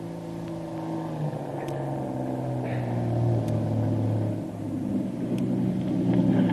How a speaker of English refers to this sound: The motor launch that has picked Kitty up is just warping into the dock in front of Doc Beard's plantation home, and the two Marines prepare to take her into the house.